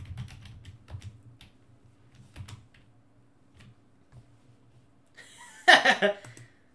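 Irregular clicking of someone typing on the keyboard of a computer hooked up to a TV and the internet to look things up in real time, scattered keystrokes over a low background hum, followed near the end by a brief, louder burst of voice.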